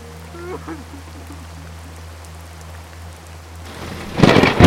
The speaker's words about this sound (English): Thunder crashed in front of him.